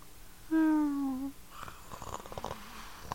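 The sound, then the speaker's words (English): A person imitates a cat purring: a brief, steady voiced hum that slides slightly downward, followed by a softer, rough, rattling purr-like sound lasting a couple of seconds. “Purring feels extra good.”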